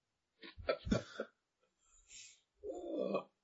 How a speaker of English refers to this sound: Coughing makes me think of balls.